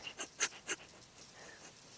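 Several quick, breathy sniffs very close to the microphone, in short bursts of two or three, with soft noisy hiss between them and no talking.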